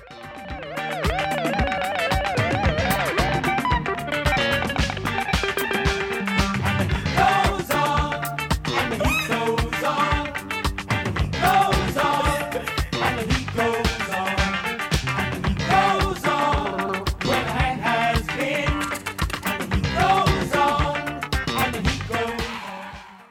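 A dense new wave rock passage with a driving, busy beat, choppy scratchy guitar strokes and wavering sustained tones layered on top, holding a steady, loud level with no singing.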